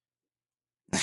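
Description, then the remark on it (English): After near silence, a loud, low-pitched meow from a pet cat bursts in right at the end, gruff and raspy like the voice of actor Keith David, and is cut off almost as soon as it starts. “God, my cat sounds like Keith David.”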